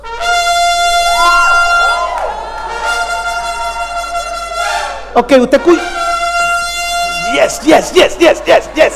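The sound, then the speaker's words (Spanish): A trumpet blares loudly in long, wavering sustained notes, then breaks into a rapid series of short staccato blasts, with brief spoken voices mixed in. “eso es una trompeta. Imagínese 300 trompetas a la madrugada.”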